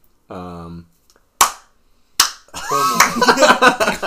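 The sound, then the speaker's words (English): A brief hummed vocal sound, then two sharp, loud hand claps spaced almost a second apart, followed by a person talking. “He like claps his hands.”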